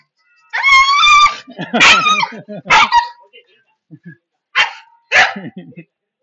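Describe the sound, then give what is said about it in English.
A dog barks loudly in a handful of sharp, harmonic yelps, the first one drawn out into a whining howl, followed by a few shorter barks with brief pauses between them. “That dog looked desperate to either get into a fight with Ron”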